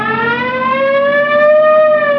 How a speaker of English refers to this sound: Well, that's it. You want to hit the siren? Yeah. I got the light.